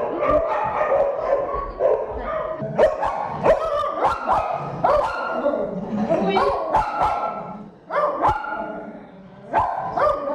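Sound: dogs barking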